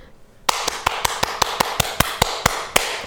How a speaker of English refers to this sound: Okay, can you clap really loud? Here, I'll hold it.